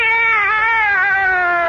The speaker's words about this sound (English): Meow! Back in the bag, Minerva.